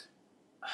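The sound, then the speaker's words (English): After a moment of near silence, a single sudden, sharp sneeze bursts out, loud and breathy, with no talking around it. “Bless you.”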